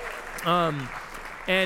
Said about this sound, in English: Yeah, we can cheer that on.